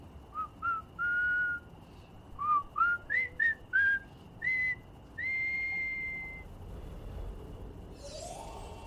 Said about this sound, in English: Oh. What? You aren't making the whistling noise? Oh, it's coming from the window.